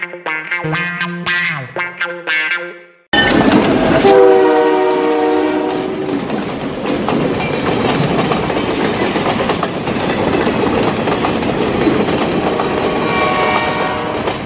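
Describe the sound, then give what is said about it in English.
A loud train horn blares a chord, then a train roars past with its horn sounding again briefly over a steady, heavy rumble and rhythmic clatter of wheels on rails. “I have to say, you know, my grandfather worked for Canadian Pacific when I was a kid. And I've always loved trains.”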